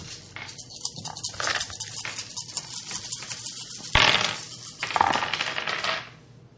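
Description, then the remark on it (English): Eight dice clatter across a tabletop in quick, dense clicks, followed by two louder, sharper rolls toward the end. The rattling is clear, with no talking. “So, you 3 roll 8 dice.”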